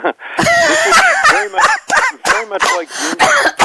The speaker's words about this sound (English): So you got to let me just cough on my laugh here.